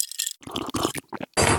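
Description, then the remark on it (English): A shot glass is shifted around on a hard surface, producing a few short, rough scraping and knocking bursts with brief pauses between them and no voices. “My shot glass is in the way.”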